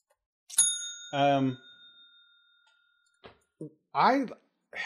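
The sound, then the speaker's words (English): A single bright bell ding, rung to mark the start of spoilers, with a long, steady ringing tone that fades over a few seconds, while a person talks briefly over it and again after it dies away. “Moving into spoilers with it. Spoiler bell here.”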